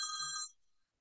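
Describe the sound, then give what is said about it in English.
A telephone rings once in a short, bright, steady burst of layered high tones that lasts about half a second and then fades quickly, with no voices. “I'm sorry for that. Let me turn That's off okay.”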